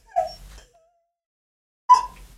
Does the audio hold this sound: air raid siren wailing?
no